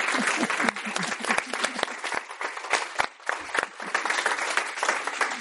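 An audience applauds steadily for several seconds, a dense wash of many hands clapping, with some murmuring voices mixed into the crowd noise, as the audience thanks the speakers.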